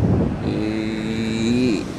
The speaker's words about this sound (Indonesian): Ya begitulah suasana di pantai, duduk di pinggir pantai di pasir ya.